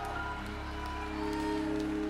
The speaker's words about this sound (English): Come on, church, one more time. Can you give God a big clap of praise?